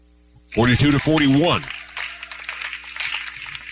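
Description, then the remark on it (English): A short voiced shout rings out, then scattered, polite light applause patters from a crowd at a women's basketball game after a made free throw, soft and thin, fading in and out for a couple of seconds. “She gets the golf applause.”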